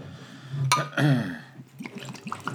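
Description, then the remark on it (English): 1792 whiskey being poured into a glass over ice: a quick clink, then a short gurgling pour that rises in pitch as the glass fills, followed by a few soft drips and trickles. “I'm pouring Christina's whiskey now.”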